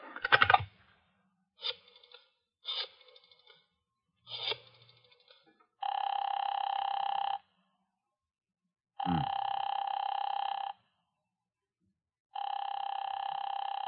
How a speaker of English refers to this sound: Could be right here from the camp, Colonel. An extension number. Mind if I use your phone? No. Go ahead. I'll dial extension 427 and see what happens.